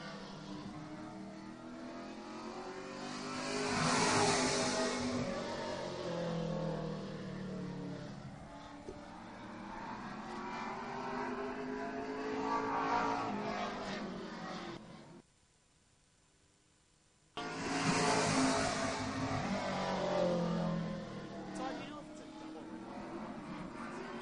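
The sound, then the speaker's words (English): The engine of the 34 car, driven by Daryl Horwath, revs and roars loudly as it heads back out onto the speedway track for qualifying, its pitch rising and falling as it accelerates past, briefly dropping out for a couple of seconds before roaring back. “Looks like 34 car heading back out onto the track.”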